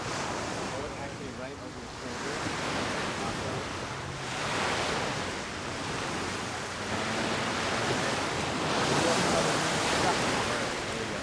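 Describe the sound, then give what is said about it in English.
Waves wash onto the beach at Loyola University at 5 a.m., in near darkness, in a steady, hissing roar, swelling and receding in slow surges every few seconds, with a low rumble underneath and no one speaking. “at 5 a.m., I headed out to the beach at Loyola University, the starting point for Brother Matt's swim”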